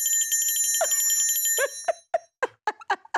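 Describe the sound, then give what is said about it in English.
A bright bell rings rapidly and continuously for about a second and a half, then breaks into a quick series of separate, loud dings, with no one talking. “Let's get a bell ring”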